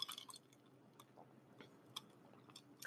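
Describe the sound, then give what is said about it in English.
Quiet sipping of an iced latte with almond milk, with soft wet slurps and scattered small clicks like ice shifting in a cup, spaced irregularly over a few seconds with no talking. “First, I need a sip of my hydration caffeination, though. She's an iced latte with almond milk.”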